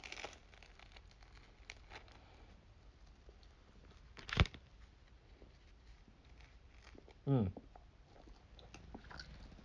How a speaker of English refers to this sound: I'm giving y'all a hint, bro. I'm chewing mad close to the mic, so you know what I'm eating. If you want to peg me, there it is.